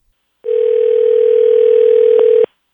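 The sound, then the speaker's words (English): A telephone line sounds a steady, loud mid-pitched dial tone for about two seconds as a phone call is being placed, unbroken apart from a faint click near the end, with no voices. “Let's give him a dial.”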